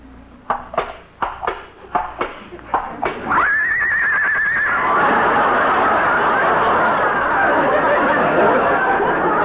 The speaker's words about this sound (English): She's caught cold already. Poor kid. Dearie, you can open your eyes now. Lillian is a horse.